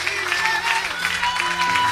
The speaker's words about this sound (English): And let's just give out a shout of praise and a hand clap. Amen.